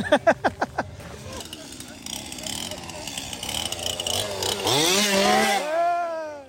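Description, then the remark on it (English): A chainsaw wielded by a clown revs in quick sputtering bursts, then drones steadily before roaring up to a loud, rising whine, with voices faintly audible underneath. “The chainsaw clowns always try and get me.”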